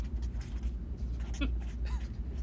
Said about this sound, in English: God, I love that sound. Beware there. The destroyers. The Sharpie on the paper.